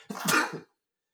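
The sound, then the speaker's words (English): A single loud sneeze: a short intake of breath followed by a sharp, breathy burst that fades quickly, then silence. No one speaks. “Bless you.”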